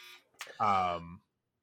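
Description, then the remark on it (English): A drawer gives a single loud, rasping buzz lasting about half a second, steady in pitch with a harsh, rich tone, preceded by a brief burst of faint, indistinct noise. “No, that was not me buzzing you for time. That was my drawer.”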